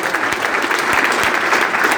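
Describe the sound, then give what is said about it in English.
A crowd at a public question-and-answer meeting applauds a man who has just spoken: dense, steady clapping from many hands that keeps an even, loud level throughout, with individual sharper claps popping out of the wash. No one speaks. “If I could stand and give that man a standing round of applause, if there's everything today, you should listen to this man.”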